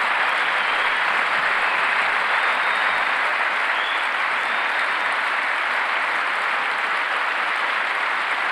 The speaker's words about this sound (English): It's like the longer the applause break, the more ridiculous thing that he said.